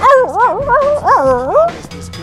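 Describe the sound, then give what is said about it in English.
A person imitates a dog's bark, voicing three or so closely spaced, loud yappy barks with wavering, whiny rises and falls in pitch. “I thought it was more like bow wow wow.”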